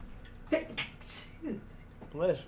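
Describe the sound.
A woman's sharp, breathy sneeze bursts out, followed by a hissy exhale and some brief voiced sounds, like a short murmur or reaction afterward.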